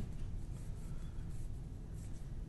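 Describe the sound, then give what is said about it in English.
A pencil scratches steadily across paper in quick, continuous scribbling strokes, soft, with no voices over it. “What are you doing with that pencil there?”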